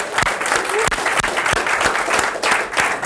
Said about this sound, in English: And so let's just take a moment and let's just give a hand clap for Jesus for rising from the grave, for being alive, right?